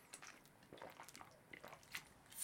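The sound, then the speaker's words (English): Someone takes a quiet sip of water, with soft wet mouth clicks and a swallow, no talking. “Excuse me, drinking a little bit of water there.”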